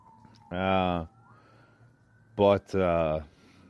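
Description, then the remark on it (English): A passing police car's siren sounds in loud, harsh electronic bursts: one long blast, then a short chirp and another sustained tone, with a faint steady whine in the background. “Cop sirens, I told you.”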